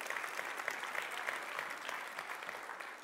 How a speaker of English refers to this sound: He's actually been serving for 4 years in the youth ministry. Yeah, give him a round of applause.